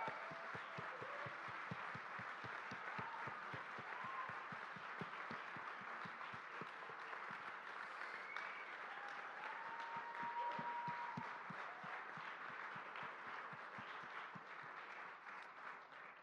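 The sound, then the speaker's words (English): A crowd applauds a team of church leaders steadily for about sixteen seconds, dense clapping from many hands at a consistent loudness, with a few faint whoops and voices rising through it before it starts tapering at the end. “So I wonder if you might turn towards these guys and just give them a round of applause.”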